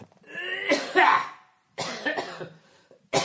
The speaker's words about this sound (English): You know, having a cough really affects your timing.